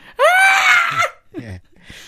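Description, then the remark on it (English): A person lets out a loud, shrill scream lasting nearly a second, mimicking an animal's alarm call, followed by brief low vocal sounds and a short breath. “and one means shit, big thing, yeah, run. That's just a scream, isn't it?”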